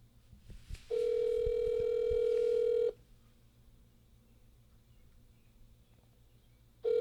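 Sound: phone call ringing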